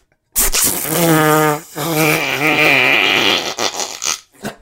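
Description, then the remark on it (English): A voice imitates a big, drawn-out fart: a loud buzzing, wobbling blurt that breaks briefly, continues with a warbling pitch, then trails off into breathy sputters. “And then, like, the fart was always the peakest fart. It wasn't like a little. It was like.”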